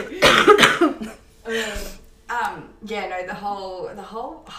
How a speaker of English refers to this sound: I love it how we're talking about health things and I'm just fucking coughing up. Like, my chest is like.